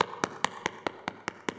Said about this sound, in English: It's knocking. It's knocking. It's knocking.